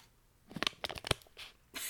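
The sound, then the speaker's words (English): Crinkly plastic rustling of a Cheez-Its snack cracker bag, a quick run of sharp crackles and crunches followed by a brief steady hiss of crumpling, with no voices. “Sorry, I'm rustling around the back. Cheez-Its are very important.”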